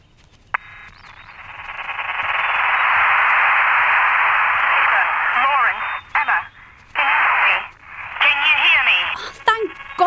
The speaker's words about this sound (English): You sound like you're on a really bad phone line.